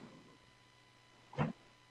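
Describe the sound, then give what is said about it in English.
A single short dog bark cuts through otherwise quiet surroundings, one brief sharp yelp with no talking around it. “Let me get my dog. Jack, you can't yell.”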